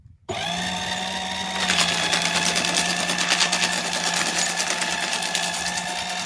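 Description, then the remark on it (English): A paper shredder motor starts abruptly and runs steadily with a high, buzzing whine, growing louder and grittier with rapid chattering after a second or so, continuing without any voices. “Yeah, it sounds like a paper shredder.”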